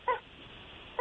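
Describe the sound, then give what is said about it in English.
A squeaky toy squeaks twice as a six-month-old puppy plays with it, short high-pitched honking squeals about a second apart, thin over a faint background hiss with no talking. “My puppy is playing with her squeaky toy.”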